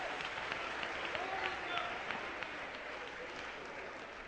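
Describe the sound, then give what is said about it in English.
A crowd of young adults claps steadily in praise of the Lord, a dense wash of many hands applauding together, with faint voices murmuring underneath. “Let's get a Lord a hand clap.”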